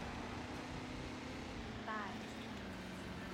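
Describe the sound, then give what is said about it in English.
A massive pickup truck engine runs loudly with a steady, droning low rumble that holds throughout, with a brief higher whine rising near the middle. “We have a massive pickup. Let's fucking go.”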